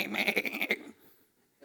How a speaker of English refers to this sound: but Samuel said, yo, what is this bleating of sheep in my ear?